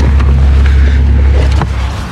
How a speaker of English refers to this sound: It's funny, there's so many cars here, but I don't know.